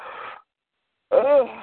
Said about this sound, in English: Yawning.